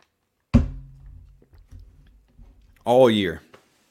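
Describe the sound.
Someone takes a sip of a drink: a sharp click, soft low gulping and swallowing noises, then a short voiced breath of satisfaction.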